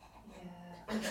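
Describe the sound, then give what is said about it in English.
A person huffs out quick, breathy pants into the microphone, imitating a dog, ending in a louder burst of air noise. “Do you know when your nose is all in and you're like breathing like a dog and you're.”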